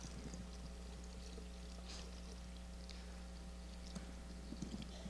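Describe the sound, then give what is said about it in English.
Liquid pours steadily into a container with a small orange cork at the bottom, a continuous splashing trickle with a low hum underneath and a few brief clinks near the end. “Hopefully you can see that little orange cork in the bottom of this picture, because see, here's what happens when we begin to pour in honor, when we begin to praise, when we begin to help people see how valuable they are.”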